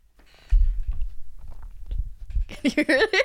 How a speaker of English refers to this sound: Yours sounded disgusting. Yours was the actual liquid that was going down the throat.